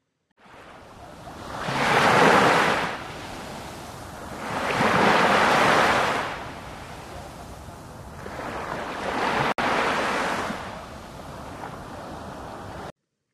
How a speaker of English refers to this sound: Wow, do I love the sound of those waves. It brings me back to when I was in Cuba.